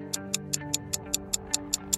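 A clock ticks in a quick, perfectly even rhythm, about ten crisp, bright ticks in two seconds, sitting over a soft, sustained low tone with no voices.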